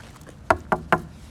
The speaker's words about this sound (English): I mean, it could happen, but let me knock on some wood.